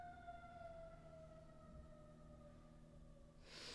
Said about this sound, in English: let me wait for this ambulance to go away.